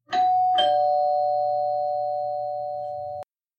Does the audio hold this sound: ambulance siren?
no